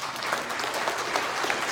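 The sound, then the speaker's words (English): An audience claps steadily, many hands producing a dense, crackling wash of applause at an even, fairly loud level with no voices rising above it. “Clap, clap, clap.”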